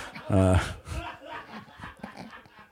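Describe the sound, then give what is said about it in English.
A large Rottweiler dog pants, with a loud, brief burst of sound near the start, while people talk over it. “So this is a Rockwilder. Yeah. Those dogs are no joke.”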